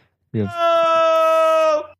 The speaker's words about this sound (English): Oh, there we go. I was like, wait, what is this? I've never heard this one. Okay, yeah, good enough. Someone yelling.